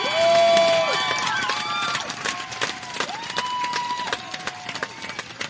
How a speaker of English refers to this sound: Could we clap for them one more time and for the Lord Jesus?